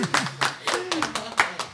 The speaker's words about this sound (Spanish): Buenos días a todos. Sí, bueno, un aplauso si quieren dar.